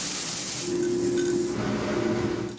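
A computerized infrared coffee roaster roasts coffee beans in a coffee shop, giving off a continuous airy hiss over a low mechanical hum, with faint clinks now and then and no voices.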